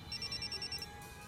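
A phone rings with a rapid, high-pitched electronic trill of pulsing beeps that lasts under a second, then falls away to a quiet background hum, with no voices.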